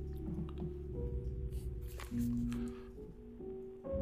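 A bourbon bottle is opened and liquid is poured, with a low, steady gurgle and shifting resonant tones. The sound is fairly quiet, and no one speaks.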